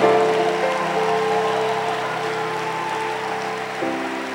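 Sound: audience clapping hands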